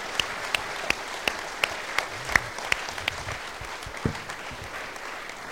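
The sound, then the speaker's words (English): A church crowd applauds in a steady, dense wash of clapping, with a few sharper individual claps popping out above it throughout. “Let's give these guys a huge round of applause.”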